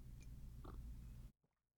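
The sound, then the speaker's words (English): A quiet sip of coffee from a cup, a brief slurp with a soft mouth noise, lasting about a second before cutting off to near silence. No one speaks. “This is my second cup of coffee for the day, which I need a sip of.”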